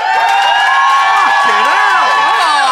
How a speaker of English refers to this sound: if you think Brett and Ben won the day, then applaud now